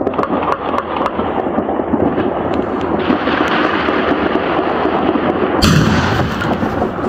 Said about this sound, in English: Is that a grenade? Somebody next to me had what sounded like a 50 cal elephant gun. Probably just a shotgun, but like...